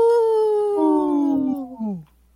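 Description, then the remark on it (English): Human voices mimic a wolf's howl on Native Roots Radio for the wolf-protection group Howling for Wolves: one long, steady wail that slowly drops in pitch, joined midway by a second overlapping howl, both loud before fading out together after two seconds. “This portion of the show is supported by Howling for Wolves, protecting wolves for future generations. Howl! Howl!”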